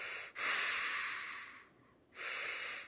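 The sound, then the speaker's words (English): A voice imitates a fireman breathing through a rubber mask breathing apparatus: two long, loud, hissing breaths, the first drawn out for over a second, a short pause, then another rasping breath. “He had this rubber mask on and this, you know, breathing thing.”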